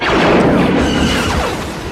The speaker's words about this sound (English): Oh, they just blew it up. Can't pull the fire alarm now. Shit's on fire.